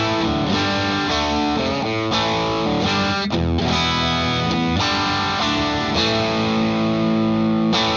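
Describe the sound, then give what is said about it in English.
A distorted electric guitar plays sustained, chord-heavy phrases through an amp with a distortion pedal, with a bright, slightly fizzy, chimey top end and steady loudness, alone without any voices. “And still, you're still hearing a little bit of chiminess. I think some people call it fizziness, even.”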